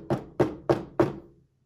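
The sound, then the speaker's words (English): Four firm, evenly spaced knocks on the door of a house just after supper, fairly loud, each a dull wooden thud with a brief ring that fades out after the last one. No one speaks. “We had just finished supper when there was a knock on the door.”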